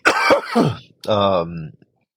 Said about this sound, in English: Oh God, sorry, I'm trying to get myself together with the way I'm coughing right now. Side note, has nothing to do with this, but my cough has not been getting better. In fact, I would say I'm getting worse.